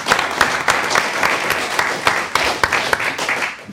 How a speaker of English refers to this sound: All right, big round of applause for ….